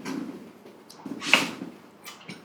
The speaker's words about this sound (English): Somebody definitely opened that door. We almost had another visitor just join the party right now.